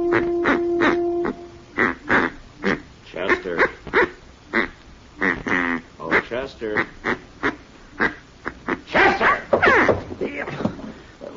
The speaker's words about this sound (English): Oh, this is a duck call. I ordered all the way from St. Louis. It just come in the mail. Doesn't sound like any duck I ever heard. Oh, it's guaranteed, Mr. Dillon.